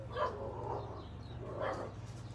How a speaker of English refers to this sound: The dog. So present to the moment. She sees the other dog, or he sees the other dog, going crazy.